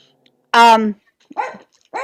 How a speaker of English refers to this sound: I'm sorry, dog. She's barking at the mailman.